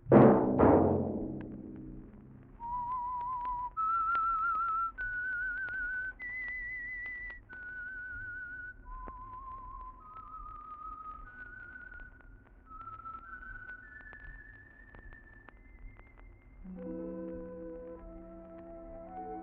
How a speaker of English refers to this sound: Let that whistle be your signal for the Signal Oil program, The Whistler, each Monday at this same time.